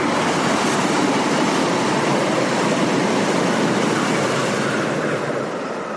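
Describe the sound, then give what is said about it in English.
A short Via Rail train passes with a steady, broad roar and rumble of wheels that holds evenly for several seconds, easing off slightly at the very end. No one speaks. “That's a very short Via Rail.”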